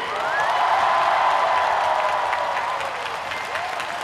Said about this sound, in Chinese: 而家你知啲人好劲噶嘛，就话唔知今日系我喺红馆嘅第100场演唱会。我哋一齐庆祝啊！俾啲掌声你哋自己。